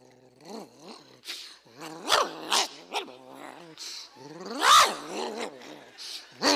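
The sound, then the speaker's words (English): A voice imitates a German Shepherd growling and whining as it jumps up on a door and twists the knob with its mouth, in a continuous series of rising and falling snarls, fairly loud, with brief sharper bursts. No doorknob sound is evident. “German Shepherd jumped up on the door, got his mouth around the knob.”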